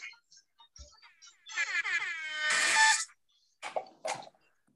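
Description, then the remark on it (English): A loud, blaring air horn blast with a rich buzzing tone holds for about a second and a half, followed by a couple of short, harsh bursts and brief scattered noises. “Give me the air horn.”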